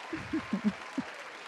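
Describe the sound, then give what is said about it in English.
A burst of applause on the ANK Sports Show, welcoming the co-host, with a handful of uneven, thumping claps standing out over a steady wash of hissy crowd noise. Nobody speaks. “Give her a hand clap, y'all.”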